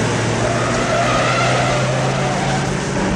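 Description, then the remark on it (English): Steady, loud car engine noise from a movie chase scene of two fairly slow cars, one a 308, driving along Sunset Boulevard: a continuous roar of the vehicles with faint tire sounds, no voices present. “It's a great scene with two fairly slow cars.”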